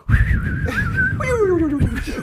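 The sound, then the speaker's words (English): A person imitates the snoring of a dog named Munchie: a steady low, rough rumble with a high whistling whine over it, ending in a squeaky tone that slides downward, all lasting about two seconds. “Can you do Munchie's snoring sound?”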